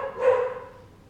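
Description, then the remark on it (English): One of the speaker's dogs gives one short bark, rising quickly and then trailing away, with no voices and only faint background noise around it. “Oh, my dogs are barking.”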